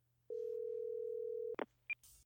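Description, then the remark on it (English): A steady telephone dial tone hums for over a second, then cuts off into a few short clicks and a brief high beep as a number is dialed, ending in a burst of noise. “So let's get him on the... the old lobe fin phone. lobe fin phone, man. Lobe fin phone. All right. And dial away.”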